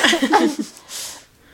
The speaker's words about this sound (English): Getting over a little cough.